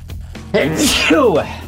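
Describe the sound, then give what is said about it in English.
A single loud sneeze: a short voiced intake rising into a sharp, hissing burst, then a brief trailing vocal sound before it fades. “Bless you.”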